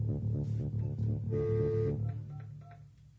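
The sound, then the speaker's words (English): A series of short telephone dialing tones beeps in a quick, even rhythm as a guest is called on the phone, followed by a longer steady tone, fairly clear before fading slightly at the end. “We're going to bring a guest on the phone here. Hold on one second as I get him up.”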